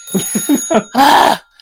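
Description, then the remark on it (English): A telephone rings: four quick, clipped pulses followed by one longer, bright, jangling ring that cuts off abruptly. It is fairly loud and there is no talking. “Phone rings again.”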